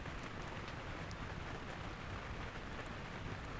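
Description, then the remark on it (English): Rain patters steadily on tent fabric, a dense, continuous hiss of countless small drops at a soft, even level with no voices. “And wrapped up warm in my sleeping bag, I could hear the faint patter of raindrops against the tent's surface.”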